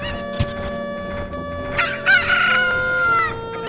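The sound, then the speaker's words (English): A rooster crows loudly, one long harmonic call rising near the middle, with chickens clucking faintly around it. No voices, just the birds. “It's because we were talking about video games, and every now and then Link will kick a chicken.”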